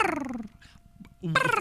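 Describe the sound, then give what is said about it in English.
A voice imitates a chirping cricket with squeaky, whining vocal sounds: one sliding downward, a brief near-silent pause, then another rising sharply and ending loud and strained. “let's each do an impression of a chirping cricket.”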